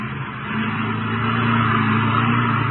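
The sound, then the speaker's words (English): A car engine hums steadily and loudly as the vehicle drives around cottonwoods to look for a break in a fence, its low drone swelling slightly after the first half second and then holding even, with no voices. “you better drive around the cottonwoods and have a look”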